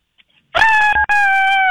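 A woman, a radio contest winner of haunted forest tickets, lets out a loud, shrill, sustained scary scream that breaks off for a split second, then resumes at the same piercing pitch and holds steady until the end.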